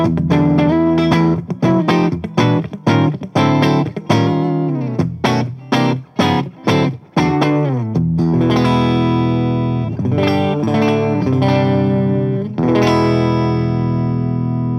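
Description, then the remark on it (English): Clean electric guitar played on the neck and bridge pickups together, with a bright, twangy tone: a run of quick rhythmic chord strums, then fuller chords left ringing out, played fairly loud with no talking. “I really like the way that clean sounds. It's really chimey and has enough low end to kind of drive, but doesn't really lose the clarity.”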